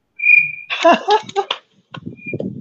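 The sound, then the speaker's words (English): A woman vocally imitates a cricket chirping: a thin, high whistle-like tone followed by a burst of raspy, trilling clicks. The sound is fairly loud, and a faint high tone returns over low murmuring. “she can make weird types of noises. Do you guys know what the cricket is?”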